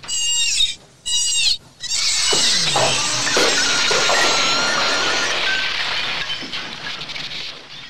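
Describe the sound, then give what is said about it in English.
A voice makes shrill, squealing screeches in short bursts, then one long sustained shriek with wavering, sliding pitch, imitating a dolphin's high cry. “Like high-pitched dolphin screech?”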